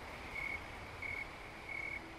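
Snowy tree crickets chirp in Boulder County at about 70 degrees Fahrenheit, in a slow, steady rhythm, three evenly spaced high-pitched trills over faint background hiss, with no voices present.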